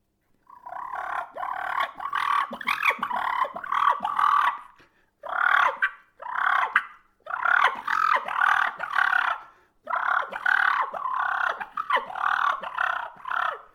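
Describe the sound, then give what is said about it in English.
Harsh, rapid turkey fighting purrs in several long, aggressive bursts separated by short pauses, a rattling, raspy churr sounding loud and continuous with no talking. “If you get aggressive with that, it'd be more of a fighting purr.”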